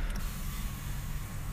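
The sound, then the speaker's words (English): A steady, low mechanical hum with a faint creak runs the whole time as a couple of a car's power windows roll down. Nobody speaks. “I rolled down a couple windows.”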